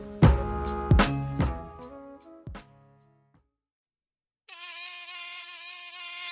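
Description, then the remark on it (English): A few ringing musical notes fade into silence, then a steady mosquito buzz cuts in: a thin, high whine that wavers slightly in pitch and keeps going to the end. “not all mosquitoes are malarial, obviously, yes?”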